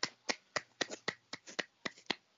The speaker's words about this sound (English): Sorry, I just felt like giving him a nice clap since nobody clapped for him because nobody was at the draft.